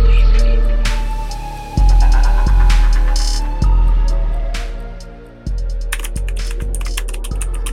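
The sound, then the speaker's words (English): Rapid, crisp clicks of a clicky mechanical gaming keyboard being typed on in uneven bursts, fairly loud, over a steady low droning hum. “I got the fancy clicky gamer keyboard nowadays, so that's on me.”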